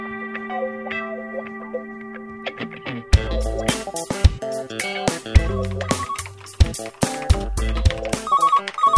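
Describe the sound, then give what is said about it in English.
A telephone rings at the 4am Creative Advertising Bureau with an electronic ringtone: sustained synthetic tones at first, then a loud, busy run of repeating melodic beeps and percussive hits, with no one talking. “Ah, phone's ringing”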